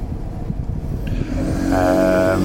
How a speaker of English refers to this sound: Another bus has gone past.